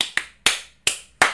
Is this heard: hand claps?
yes